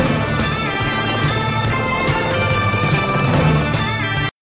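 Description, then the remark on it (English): A loud, full-band instrumental TV theme tune plays with a steady, driving beat and sustained tones, no voices, cutting off abruptly at the end. “That's the theme to the TV version of Blue Thunder.”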